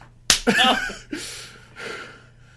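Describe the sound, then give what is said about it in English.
A single sharp slap cracks out, followed at once by a short vocal yelp and a couple of breathy, hissing exhalations that trail off. “Don't slap your gimp.”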